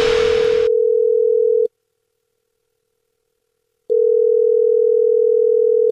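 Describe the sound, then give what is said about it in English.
A phone line's ringback tone on an outgoing prank call: a steady electronic purr sounds, breaks off for about two seconds of silence, then starts again. A short burst of hiss comes just before the first ring. “I'm on the phone. I'm calling Benjamin.”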